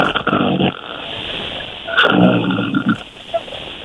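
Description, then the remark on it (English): A person imitates a loud snore with two rough, rasping breaths, the first short and the second longer with a guttural, growling rattle. “Give us an actual snore. Put some oomph into it.”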